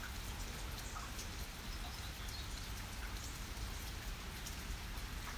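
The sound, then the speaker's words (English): Steady rain falls in a woodland, heard from a picnic table under a pavilion, a dense, even patter of drops on leaves and surfaces that holds constant throughout, with no voices. “As I sit at this picnic table under this pavilion, looking at the wet, rainy woods around me”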